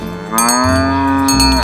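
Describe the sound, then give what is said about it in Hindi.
A cow named Dhano, which has a newborn calf, lets out one long, steady, low moo that holds its pitch for over a second, with a couple of light metallic clinks from the bell tied around its neck, and no talking. “देखो कैसी है अपने गले में बंधी घंटी की आवाज की रही, वाह रे मेरी धनो।”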